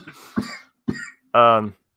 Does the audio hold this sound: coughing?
yes